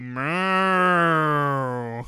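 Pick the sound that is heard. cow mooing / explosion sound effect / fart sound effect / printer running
cow mooing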